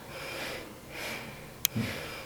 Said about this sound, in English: Yes, you can hear the rhythmic movement of the breath, and that is what we need to progress into.